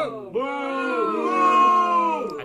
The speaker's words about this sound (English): Soundboard, you've been booed by the wave file.